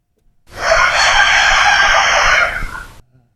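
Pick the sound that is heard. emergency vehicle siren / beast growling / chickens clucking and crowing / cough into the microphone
chickens clucking and crowing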